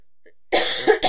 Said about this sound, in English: I mean, I'm fine if you have a cough in there, but you can take it out if you want, or just delete everything, I guess.